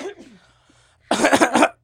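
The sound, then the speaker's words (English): A short burst of three harsh, loud coughs in quick succession, following a brief moment of soft voice and a pause. “I could start uncontrollably coughing.”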